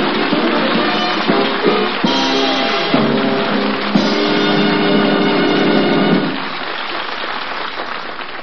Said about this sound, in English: And friends, do you hear what I hear? A lawnmower and Chester A. Riley.